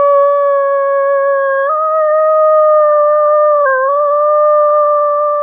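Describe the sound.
A guide imitates an American wolf howl with a higher-pitched yip similar to a coyote's: one long, loud, steady tone held for over five seconds, shifting pitch slightly twice along the way, with nothing else audible.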